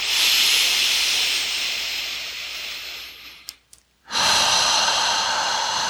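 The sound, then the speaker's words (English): Deep, forceful breaths of a 12-fold lower belly breathing exercise: a long airy exhale that trails off, a brief pause, then another strong rushing breath. No talking, just steady breathing. “And I'm going to begin my 12-fold lower belly breathing.”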